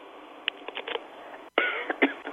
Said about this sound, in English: Excuse me. Are you coughing?